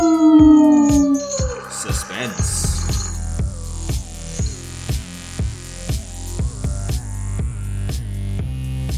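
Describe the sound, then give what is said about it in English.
A single wolf-like howl glides downward in pitch for about a second, then gives way to loud music with a steady, pulsing beat that continues to the end. “And so closes The Devil's Saint, brought to you by Legitimate Likes, tonight's tale of... Aroo!”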